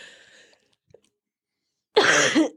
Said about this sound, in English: Sorry. Make sure there's dead air. I couldn't hold back my cough anymore. And no one was saying anything, but I still had to cough.